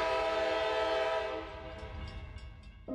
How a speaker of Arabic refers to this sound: قطار يقف في محطات محددة سلفاً.